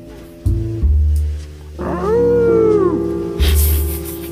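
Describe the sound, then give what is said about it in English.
A single drawn-out wolf howl glides up and slowly falls away, laid over a heavy, thumping bass-driven music track. “Wolf.”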